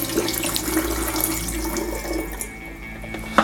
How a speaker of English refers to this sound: Okay, let's get some water in there and rinse this off. That's the first rinse.